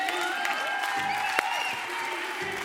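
An audience cheers and applauds steadily throughout, a dense wash of clapping mixed with scattered shouts and whoops, fairly loud and sustained with no pauses.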